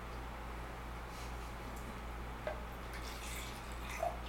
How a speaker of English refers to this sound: So I'm going to pour the Cornas first.